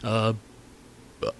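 A single short burp, fairly loud and throaty, lasting about a third of a second, followed by quiet and then a brief vocal blip near the end.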